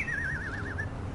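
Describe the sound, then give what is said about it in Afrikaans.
A parrot in a neighbourhood lets out a single wavering, warbling whistle, clear, over a low, steady background rumble. “Tot die papegaai in die buurt het vuilbekke.”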